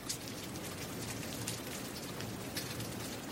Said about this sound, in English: A faint evening rain fell over Camp Patience. Back in Surratt's childhood home, the rain used to make a sharp sound as it hit the shipping container's roof. But here in the camp, it was a whispered admonition, a soft shh against the tattered tents.